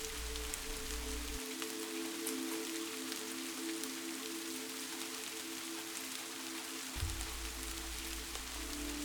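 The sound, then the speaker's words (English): Steady rain patters on a roof in a dense, even hiss of drops, with a low continuous hum underneath that briefly drops away in the middle; no voices. “Such as late nights as you lay awake in bed, listening to the rain gently dance on your roof.”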